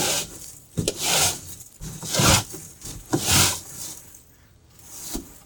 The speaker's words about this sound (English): Out back here, we got a trash can. It's just a standard black plastic trash can. Let's get some of the cobwebs off the side of it.